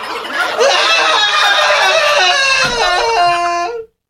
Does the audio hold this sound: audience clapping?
no